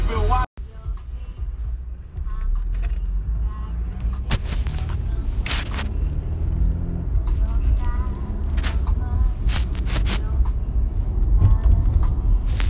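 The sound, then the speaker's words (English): Busy car wash ambience: a loud, continuous engine and machinery rumble, punctuated by repeated sharp blasts of spraying or banging, with muffled voices mixed in. “But anyway, I'm at the car wash.”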